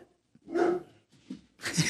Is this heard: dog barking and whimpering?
yes